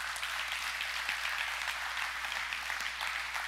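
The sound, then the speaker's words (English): An audience claps steadily, a dense, crackling wash of many hands that holds at an even, fairly loud level the whole time, with no voices over it. “And that's good when you clap.”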